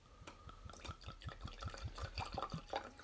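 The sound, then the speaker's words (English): Blackened whiskey glugs from a bottle into a glass as a little more is poured during a tasting, a steady series of rhythmic gurgling pulses with splashing liquid and faint trickling, no talking. “Now I'm going to pour a little bit more into the glass.”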